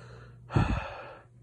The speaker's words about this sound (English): begins to wheeze and gasp. The king begins to do the same.